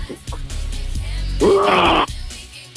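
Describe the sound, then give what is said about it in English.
A person imitates a lion, starting with a low rumbling growl that swells into one loud, strained, raspy roar about half a second long before cutting off abruptly. “give us a mighty roar first.”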